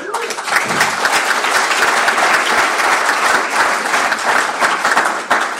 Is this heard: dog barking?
no